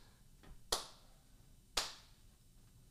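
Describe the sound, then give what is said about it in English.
A feeble attempt at applause from a studio audience: just two sharp, isolated hand claps about a second apart, with a faint tap before them, over quiet background and no talking. “That I think that goes down in history as the worst round of applause we have had in studio.”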